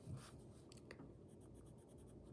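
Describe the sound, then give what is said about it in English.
Soft scratching of a brown colored pencil on paper as a figure's hair is colored, quick back-and-forth strokes that settle into a steady rhythm, fairly quiet, with no talking. “So now we're gonna have this brown pencil.”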